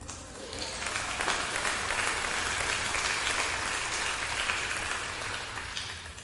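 A crowd applauds with steady, dense, unenthusiastic clapping that swells slightly and then fades without any cheering, a muted, lukewarm patter lasting several seconds.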